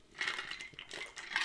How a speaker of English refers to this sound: Going to have a drink of water. Dry mouth here.